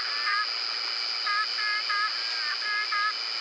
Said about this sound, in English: With the nighttime chorus of chirping insects in the Mata Atlântica forest that runs along Brazil's Atlantic coast. Listen carefully and you'll also hear frogs and toads ribbiting away the hours of darkness.